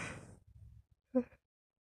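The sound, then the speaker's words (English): A single yawn from a person lying down: a long breathy inhale that fades into a low murmur, ending in a short voiced groan-like exhale. No one speaks. “I'm yawning again.”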